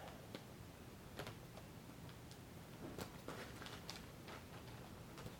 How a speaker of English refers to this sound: So now let's cut the other part of this bag, and it looks like I gotta cut. Let's see, let me fold this down so I can cut under that fold. Get my scissors again.